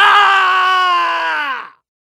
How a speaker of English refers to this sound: The karatekas stand in front of the world and shadow box. They deliver devastating kicks to opponents who aren't there. They wheel around to block imaginary punches. And they scream. Oh man, do they scream!